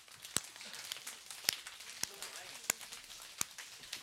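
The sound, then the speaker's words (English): A crowd striking fists into their palms, dozens of soft overlapping slaps blending into a steady rain-like patter, with a few sharper, louder smacks standing out. “I want you to take your fist. Okay? And I want you to start striking your hand.”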